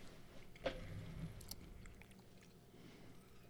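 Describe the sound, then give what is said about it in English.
Someone chewing tough, dry, salty beef jerky: one sharp bite early on, then a few softer crunches and quiet, steady mastication with no talking. “It's so hard to chew. It's more hard to swallow because there's so much.”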